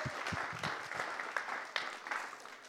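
A round of applause from a crowd for a child who came up to help, dense overlapping claps forming a steady, fairly loud patter that holds evenly for a few seconds without any voices.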